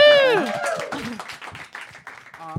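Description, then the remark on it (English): A small audience at a quiz show breaks into a quick round of applause for the team called the Tapeworms after they are given 25 points, opening with a loud, sliding whoop before steady, dense clapping carries on for a couple of seconds amid a few voices. “Round of applause to the tapeworms.”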